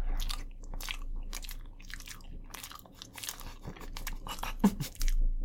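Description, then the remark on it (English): Crunchy chewing, with repeated sharp bites and crackling crunches in an irregular rhythm, loud, with no talking. “I don't like it when our chews are synchronized.”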